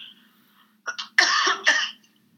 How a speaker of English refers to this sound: I'm hopefully at the tail end of a cold, and I think like all the talking is a little hard on my throat and my cough right now.